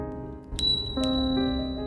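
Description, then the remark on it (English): A small hotel room call bell, that of room number 7, rings twice in quick succession, bright and metallic, each strike leaving a sustained ringing tone that lingers. No voices are heard. “Room number 7 rings.”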